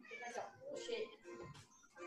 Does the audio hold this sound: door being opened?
no